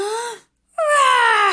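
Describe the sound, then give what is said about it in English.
Children's voices imitate a monster's roar in two drawn-out, high-pitched cries separated by a brief silence, each loud and sliding downward in pitch like a wail. “Roar, roar. Oh, very good. Look at those claws and those teeth.”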